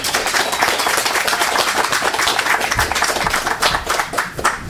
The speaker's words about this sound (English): Let's give a hand